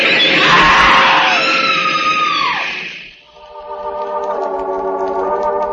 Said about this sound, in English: A woman screams.